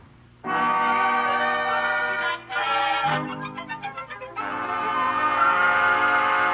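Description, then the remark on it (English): The horn of the 6 o'clock steam train for Albany blares loudly and steadily, then breaks into a rapid pulsing, wavering stretch before resuming a long sustained blast. No one speaks. “He's on his way to the railroad station to get the 6 o'clock train for Albany.”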